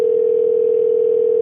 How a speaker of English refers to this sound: Usually that means they have an IP phone, right? Like a business phone. So what happens is it like answers and then it plays a ringing sound while it connects you.